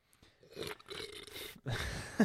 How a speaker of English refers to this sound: Always with the slurps. You gotta have the sound effect.